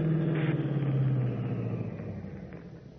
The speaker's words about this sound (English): Then, suddenly, over the deadly piercing tone of Stark's voice, Batman is conscious of another sound, an approaching car.